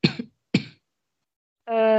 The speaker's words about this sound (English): You're coughing awfully a lot. Are you okay? It's okay. My throat's just itchy.